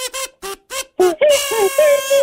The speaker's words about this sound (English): Chime, I know you love the kazoo sound effect, so I am only going to play it once for you.